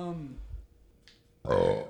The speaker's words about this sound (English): That was a nice burp.